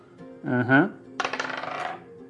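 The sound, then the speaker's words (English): Two six-sided dice being rolled: a brief voiced sound, then a quick run of sharp clattering clicks, about a dozen, tumbling for under a second before stopping. “Okay, so you have advantage, so roll 2d6, take the highest.”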